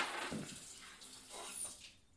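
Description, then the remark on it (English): Leftover liquor from a tasting pours and gurgles down a sink drain in a steady, splashy stream lasting about two seconds, fairly quiet, with no talking over it. “Did you just pour all the booze down the drain?”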